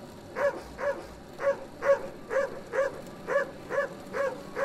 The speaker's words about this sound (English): Oh, shoot! Those dogs aren't fenced! Sounds like a whole pack of them! Man, I ain't going outside with a pack of wild dogs running loose.